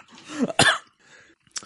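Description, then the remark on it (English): A sharp cough with a rough throaty onset, followed by a brief quiet stretch and a short faint burst near the end. “So if you cough, it means you made right.”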